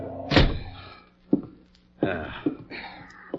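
A door is kicked shut with a heavy thunk, followed by a few lighter knocks and bumps as it settles, with a low hum underneath.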